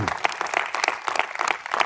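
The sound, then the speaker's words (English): A crowd claps hands to the Lord in a steady, dense burst of applause, lively, with a faint murmur of voices mixed underneath. “Come on, clap your hands to the Lord if you got that just now.”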